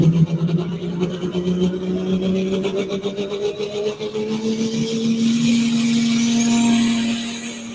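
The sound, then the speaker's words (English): A heavy pulling tractor with a narrowed front end and no air-ride front roars under load throughout, its deep droning pitch climbing steadily, with a raspy, rattling texture over the top. No one speaks. “Oh, I love this tractor.”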